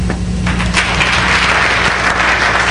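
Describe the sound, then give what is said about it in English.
A church audience applauds steadily in answer to a question of who has ever said they were too busy, a dense wash of many hands clapping at once, loud and sustained for a few seconds with no one speaking over it. “How many of you have ever said in your lifetime, just by round of applause, okay, that you've been too busy?”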